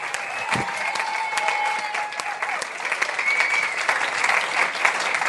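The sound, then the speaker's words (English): An audience applauds steadily for several seconds, a dense wash of claps at an even, fairly loud level with a few brief whistles rising above the noise. “And by the way, before we go, can we have a big round of applause for Gareth Reynolds, Matt Kershaw.”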